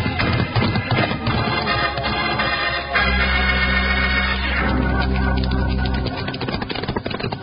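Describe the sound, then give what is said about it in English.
Horses, among them Buckshot, gallop off under their riders with a rapid, rhythmic clatter of hoofbeats over a loud, sustained backing of music, the pounding steady and driving throughout. “And now we do some riding.”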